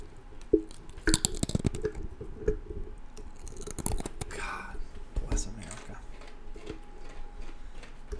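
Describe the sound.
Close, crisp crunching of someone chewing a crunchy snack, coming in irregular bursts of bites with quieter pauses between, over a faint low background murmur of voices.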